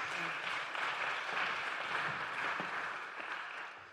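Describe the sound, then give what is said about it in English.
A crowd applauds three volunteers steadily, dense clapping for several seconds at an even, moderately loud level with no voices standing out. “Can you give them a round of applause, please?”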